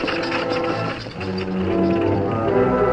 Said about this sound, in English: Shortly after Cherokee left town, driving the freight wagon with the two helpless men on board, Sheriff Bell prepared to renew his search for the thieves.